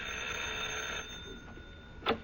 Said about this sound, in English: Swell. I'll ring the doorbell.